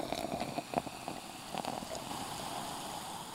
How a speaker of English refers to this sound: And there's nothing like the sound of a sparkling wine going into the glass.